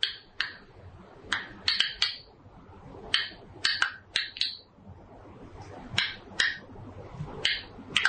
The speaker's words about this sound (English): And so we asked that question to these Israeli scientists at Tel Aviv University, and they sent back the sound of a grapevine when people are pulling grapes off of it. And this is what that sounds like.